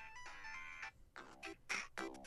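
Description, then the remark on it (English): Bright, upbeat synthesized video game level music plays back on a phone, tinny from its speaker, with bouncy melodic phrases in short bursts and no voices over it. “The Carnival Zone, now that you bring it up, I'll play that because that's also a good one.”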